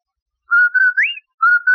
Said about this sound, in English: Did I hear what? That whistle. That's the Rinso White whistle.